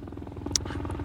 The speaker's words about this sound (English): There's a helicopter coming, though.